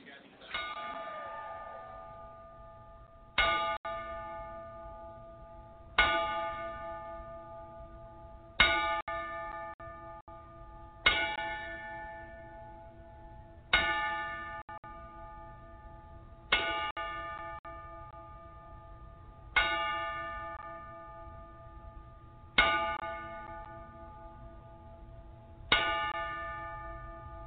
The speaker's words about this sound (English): PWG ring announcer John Ian has passed away, and this is why the show started out with 10 bell.